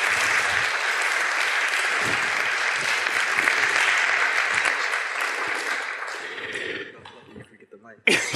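A steady wash of audience applause for a person coming up to the front, dense and loud, holds for several seconds before thinning out and fading, then a brief burst of sound at the end.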